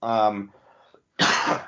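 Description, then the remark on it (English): A short voiced grunt is followed, after a brief pause, by a single loud, harsh cough into the microphone from someone under the weather from smoke. “Man, all of a sudden I have to cough.”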